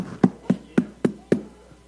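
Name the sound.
knocking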